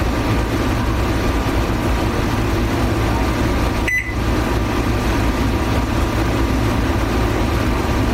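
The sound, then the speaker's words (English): A single short, high electronic beep sounds once midway through as the barcode inside an oven door is scanned, over a steady low mechanical hum that runs the whole time. “I just heard a beep, but I couldn't get any other indication.”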